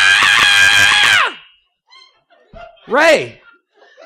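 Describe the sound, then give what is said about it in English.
A man screams frantically from a bedroom in a loud, sustained, strained cry lasting about a second, then falls off, followed by a shorter panicked yelp a moment later and faint vocal sounds. “he heard screaming from the bedroom, and a frantic … ran into the bathroom”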